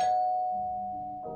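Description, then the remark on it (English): A doorbell rings about five minutes after midnight: a bright, clear tone that rings out and slowly fades, then a second, lower note strikes right at the end, fairly loud. “Well, about 5 minutes after midnight, while preparing for bed, my doorbell rang.”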